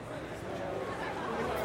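A crowd filing into the Nippon Convention Center in Tokyo for the 31st Tokyo Motor Show, October 1995: a steady, even wash of many overlapping voices chattering at once, with no single speaker standing out, holding at a constant level throughout.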